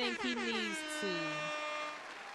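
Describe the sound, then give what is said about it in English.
A loud, brassy air horn sound effect blares close up in a couple of quick bursts with slightly bending pitch, then holds one long sustained blast to the end. “Analyst and air horn.”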